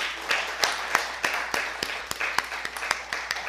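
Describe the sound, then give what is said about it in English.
An audience applauding for the Lord Jesus: a dense, steady patter of many hands clapping, with sharper individual claps popping out at irregular moments, moderately loud and with no voices over it. “How about a round of applause for our Lord Jesus?”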